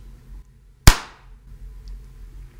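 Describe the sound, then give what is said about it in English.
A single sharp hand clap rings out loud, snapping sharply and then fading quickly into a quiet, low hum. “Okay, can I clap?”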